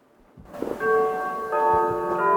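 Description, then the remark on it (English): A clock chimes with clear, ringing bell tones, two or three strikes sounding in succession and sustaining into one another over a faint low background. “Oh, that's a beautiful chime.”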